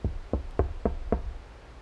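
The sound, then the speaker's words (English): Five heavy, evenly spaced knocks on a door, deep and thudding, rapped in a quick steady rhythm with nothing else around them but a faint low rumble. “Suddenly, a heavy knock frightened me as I quickly flipped my head to the doorway beside me to see my girlfriend and her auntie.”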